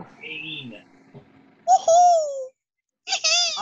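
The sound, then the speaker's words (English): Someone does two loud meows in imitation of a cat, each a drawn-out, wavering whine. A short quiet gap separates them, and softer murmuring comes before. “Meow.”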